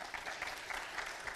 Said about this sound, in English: Shall we give these guys a round of applause, please?